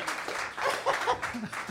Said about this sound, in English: End scene. Round of applause.